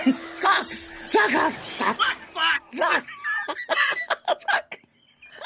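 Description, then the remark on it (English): A loud burst of chicken-like squawking used as a transition sound, with strained rising and falling cries followed by a quick run of sharp, choppy clucks before it cuts off. “Why do we squawk? Because it makes a squawking sound.”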